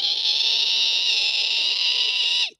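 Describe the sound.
A voice imitates a woman's screech: one loud, shrill, piercing note held steadily for over two seconds before cutting off abruptly, with no talking around it.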